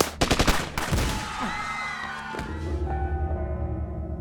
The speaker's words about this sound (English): The gunshots went off like firecrackers. As Wai Chin, the dealer, tried to look up, Willie shot him in the jaw.